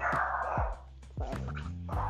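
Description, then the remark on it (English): A puppy gives a few short yips and sharp barks, then a thin, wavering whimper, fairly loud over a steady low hum in the background. “It's like a puppy thing.”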